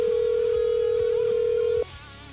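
A telephone ringback tone on an outgoing call to a guest on the Guitar Gurus show: one loud, steady electronic ring lasting almost two seconds, then cutting off abruptly into a faint line hiss.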